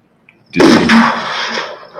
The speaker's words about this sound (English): Let's do a test. Let's do a gunshot. My day is good. Where's some gunshots?